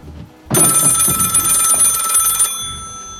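A loud telephone bell rings continuously for about two seconds with a bright metallic trill, then cuts off, leaving a faint ringing tail over low background noise.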